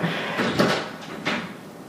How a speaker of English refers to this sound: Sound of the door closing. That's going to be edited out.